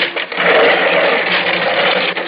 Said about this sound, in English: One of them sliding doors is open. Give me a hand with it.